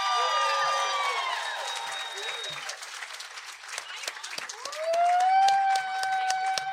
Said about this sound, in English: Thank you guys for witnessing this. Give them a round of applause.